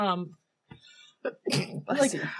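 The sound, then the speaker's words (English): A single loud sneeze: a short voiced sound and sharp intakes of breath build up before a bursting, breathy release near the end. “I just let my sneeze go.”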